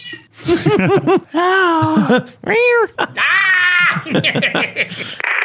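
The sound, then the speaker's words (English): A female cat at a desk meows several times, loud, drawn-out cries with rising and falling pitch following one another in quick succession, with some rustling between them as she bumps the desk. “Let me get my cat out of here. She's like bumping the desk.”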